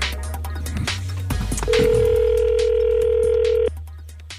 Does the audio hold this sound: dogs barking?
no